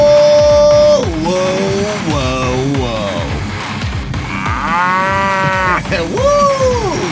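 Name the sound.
cow mooing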